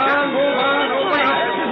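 A dense murmur of many overlapping voices, a crowd of onlookers trying to get into an alley where someone was hurt, chattering steadily and fairly loudly, with no single speaker standing out over the continuous babble.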